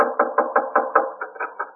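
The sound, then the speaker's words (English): Someone pounds on the door of a newspaper's copy room in a quick, steady run of about nine heavy thumps, fairly loud, with no voices. “And you hope there's still someone in the copy room as you pound on the door.”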